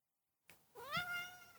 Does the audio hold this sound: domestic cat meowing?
yes